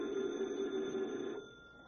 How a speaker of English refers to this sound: Tonight's FBI file continues later that night at local police headquarters. Detective Harry Parker is at his desk when the phone rings.